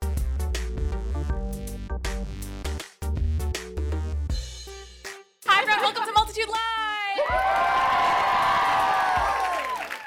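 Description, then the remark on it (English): A short burst of music gives way to a loud live audience at WBUR City Space in Boston cheering, whooping and applauding, a dense, sustained roar that fills the second half and holds steady to the end. “You knew all your applause keys.”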